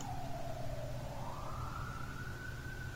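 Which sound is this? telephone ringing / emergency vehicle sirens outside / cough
emergency vehicle sirens outside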